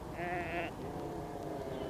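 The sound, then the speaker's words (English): A single short, clear sheep bleat rings out near the start. It sounds over a constant low rumble of machinery, bulldozers working at a mountaintop building site among heather, which continues after the bleat fades. “The sheep retreated before the grumbling machinery.”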